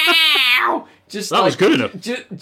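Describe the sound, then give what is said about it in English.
A person mimics a cat's meow with a loud, drawn-out, falling whine, followed by a few more short, warbling voiced meows. “Just like the cats.”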